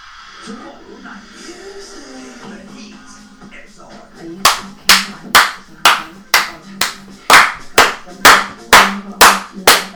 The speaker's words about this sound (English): I won't, people might think we were applauding.